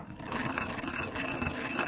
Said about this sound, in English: And I'm going to put one or two in, and then I'm going to start smashing them. First thing I do is I smash that rock into a bunch of little smaller rocks, and then I'm going to start grinding it.